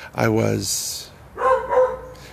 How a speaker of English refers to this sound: Don't pay no mind to the dog.